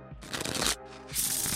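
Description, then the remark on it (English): Two quick bursts of papery riffling, a deck of playing cards being shuffled after a joker is drawn on the first turn of a card game, with a brief pause between them and faint background music underneath. “And I drew a joker on the first turn, so it's time to shuffle.”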